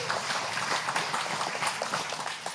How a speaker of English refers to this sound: You can clap for that, Mike. It's clap-worthy.